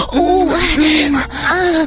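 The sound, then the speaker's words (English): Three breathy, voiced gasps from a woman in quick succession, each drawn out with a rising and falling pitch. They are fairly loud, with no talking around them. “She positioned me over the end of the desk, my hair all over my face, and I leaned back and gasped as I felt her hot, wet tongue enter my pussy lips.”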